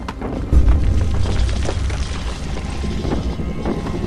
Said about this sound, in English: A huge crunching, cracking noise behind you takes your attention. Turning to face it, the three of you see, about 200 feet away, great chunks of the forest crunching over and being swallowed by the cracked earth.